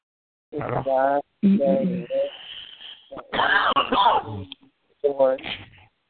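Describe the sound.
Someone coughs and clears their throat in a few loud, rough, voiced bursts, separated by short pauses, with a faint hiss lingering between them.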